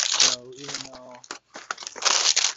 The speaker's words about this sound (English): There's a crunching sound, but that's because I'm putting something crunchy up onto the shelf. Vanilla sandwich cookies.